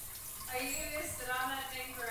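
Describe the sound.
A steady, hissing spray of warm water streams continuously from an adjustable nozzle, with a voice faintly audible over the rushing sound.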